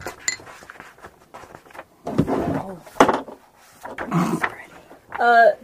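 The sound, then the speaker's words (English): An excited dog scrabbles and shuffles around, panting in quick breathy bursts, with a brief high whine near the end. “My dog is having a heart attack, I swear.”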